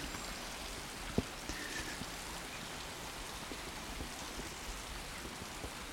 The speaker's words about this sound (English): Let's have another listen to this river because it sounds absolutely beautiful. Have a listen to this.